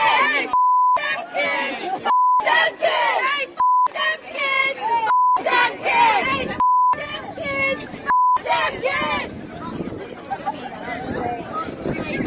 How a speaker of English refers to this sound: Yeah, we had to bleep out what they're saying, but they're basically saying F them kids, right?